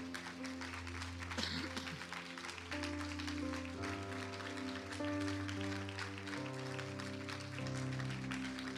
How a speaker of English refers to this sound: And could you give them a round of applause?